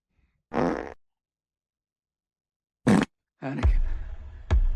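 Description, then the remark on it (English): Three loud farts separated by silence: a buzzy half-second blast, a short sharp one, then a longer rumbling fart ending in a final abrupt pop. “When I ran out of mouthwash, so I eat shawty booty and use the wetness from the farts being released on my tongue as a mouthwash replacement.”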